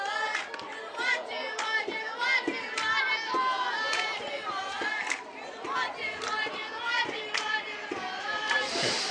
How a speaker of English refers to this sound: I set it down there because we could hear the girls cheer.